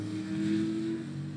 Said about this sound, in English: Wow, there's some fast motorbikes here. And mine's not one of them.